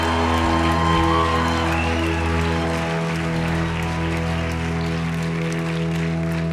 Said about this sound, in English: So how about a great hand clap for the pastor of the church?